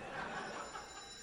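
An old-school telephone bell rings in a continuous rapid metallic trill, fairly quiet and steady throughout the short moment, with no one speaking over it.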